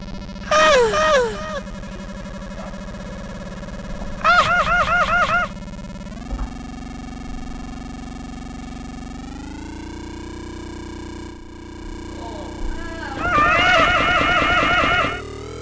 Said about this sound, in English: Hey there, you beautiful bing bong horn honk sci-fi sounds?